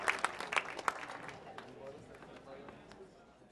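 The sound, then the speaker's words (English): An audience at an Apple Store panel event applauds the panelists, a flurry of crisp overlapping claps that is loudest at the start and gradually thins and fades over a few seconds, with faint murmuring voices beneath. “As one more round of applause, and thank you to our panelists”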